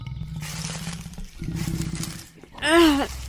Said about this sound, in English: Oh, what the fuck? You're a lion?